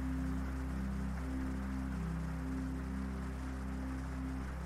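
Rain falls in a steady, even hiss with no letup, with a low constant hum running underneath. Nobody speaks.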